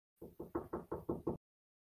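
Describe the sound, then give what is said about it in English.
Seven quick, evenly spaced knocks rap on a wooden door, loud, in a steady rhythm lasting about a second, followed by silence. “You hide under the desk, and there is a knock on your door.”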